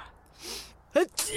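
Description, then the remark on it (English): A single sneeze: a breathy intake, then a sharp voiced burst followed by a loud, hissing expulsion of air, heard on its own with no talking. “Stop sneezing.”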